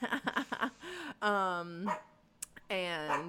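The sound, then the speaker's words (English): A dog barks in a quick run of short yaps, then lets out two longer, drawn-out whining barks, fairly loud. “Sorry, dog.”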